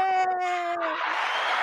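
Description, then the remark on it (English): A long, steady whooping cry gives way to a loud, hissing roar of crowd cheering that carries on without letup through the rest of the moment. “The crowd goes wild. Crowd going wild.”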